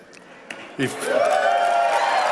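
A large crowd erupts into cheering and applause after a brief lull, the roar swelling quickly and holding steady at a loud, sustained level, as De Niro reads his original speech script from his phone.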